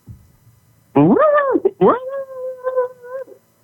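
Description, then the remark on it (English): A person growls for an ad, imitating an animal: a loud, drawn-out vocal sound that swoops up and down in pitch, breaks briefly, then continues steadily before trailing off. “Do you want to do a growl for the ad?”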